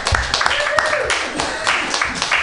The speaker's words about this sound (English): Good evening, Mutiny Radio Comedy Festival. Weed party, everybody. It's good to see you. How about a big round of applause for all the station managers that you see here tonight?